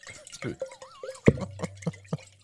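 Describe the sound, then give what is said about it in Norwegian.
A water sound effect imitating a waterfall: splashing and dripping, a string of sharp liquid plops at an uneven rhythm, with a low steady hum underneath in the second half. “Skal du lage fossen, selv om det store fossen? For det sånn det høres ut. Hør fossen, selv om det store fossen.”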